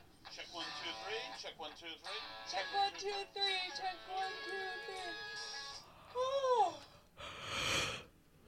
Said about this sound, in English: Oh, I should have stopped. I made myself yawn when I yawned on the video. Really? It was contagious to me.